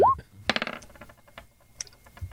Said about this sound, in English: Actually, roll me a D12.